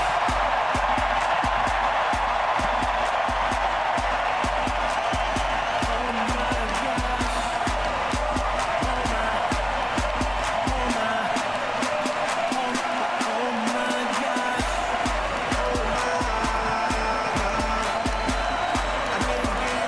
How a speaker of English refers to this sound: As you can hear there from the sold-out Rogers Center crowd, it was an exciting moment for Jose Bautista.